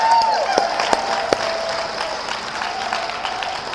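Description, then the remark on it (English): An audience applauds the musicians with steady, dense clapping for a few seconds, a few sharper claps popping out early on, while a faint whistle and a thin sustained tone hum underneath. “Let's give them a hand, huh?”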